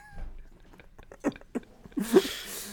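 A quiet sip of coffee: a few small wet mouth clicks, then a short airy slurp near the end, with no talking.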